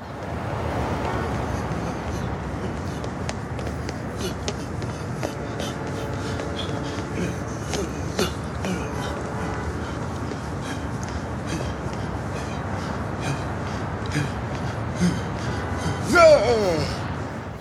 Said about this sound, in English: Like, all you hear is breathing hard and stomping. Like, that is not inspiring at all.